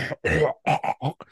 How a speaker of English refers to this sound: clear my throat before I say this.